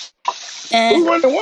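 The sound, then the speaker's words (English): Water runs steadily from a kitchen tap while a man cooks grits, a continuous hiss that starts after a brief pause, with a man's voice talking loudly over it for the second half. “Who run the water, man?”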